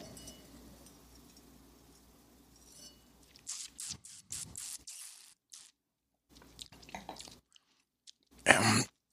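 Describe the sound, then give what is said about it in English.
Quiet mouth sounds as a person sips and tastes wine: a few wet sips and slurps with soft smacking as the wine is swished and tasted, ending in one louder, brief slurp, no talking. “When you do it right, it's just a wine with loads and loads and loads of flavor, which has me thinking I'm going to take a sip already.”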